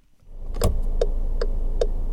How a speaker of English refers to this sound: We all know the feeling. Circling around the parking lot to win the coveted parking space. At 12:05 yesterday, I'm cursing. I've already circled this lot, you know, three times.